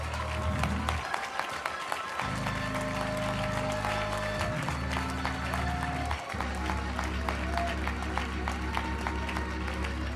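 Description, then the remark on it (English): An audience, asked to clap their hands as loud as they have all night, claps loudly and continuously for about ten seconds, a dense, steady roar of many hands, with sustained low musical tones holding underneath. “And if you believe that, I want you to clap your hands as loud as you have all night.”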